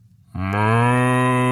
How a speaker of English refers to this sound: Moo. That's it? Moo? What, he's a cow. What more do you want?